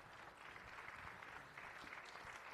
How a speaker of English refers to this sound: I want all of our dream team members to stand up and just, let's give them a round of applause. If you're a dream team member, stand up. Come on, stand up. Let's give our dream team members a round of applause.